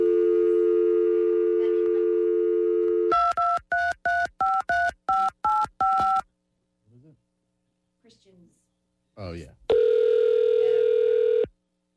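A steady telephone dial tone gives way to about eight quick touch-tone beeps. A brief pause follows, then a loud, sustained ringing tone comes through the line, with no voices.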